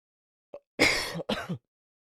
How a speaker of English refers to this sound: I'm gonna cough real quick.